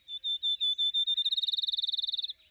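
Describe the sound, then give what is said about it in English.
A field sparrow sings alone: a series of sweet, high slurred whistles that starts slow and steadily accelerates into a rapid, bouncing trill before stopping abruptly. “the field sparrow has a simply gorgeous, easy-to-learn song. A sweet slurred note repeated faster and faster.”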